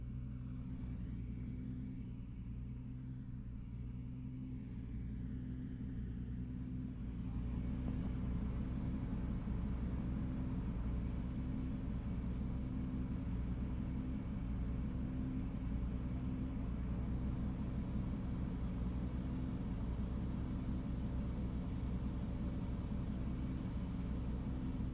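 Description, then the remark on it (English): A car engine rumbles steadily, growing louder and fuller partway through as it drives on an icy surface with snow tires. No one speaks. “the last car was on snow tires.”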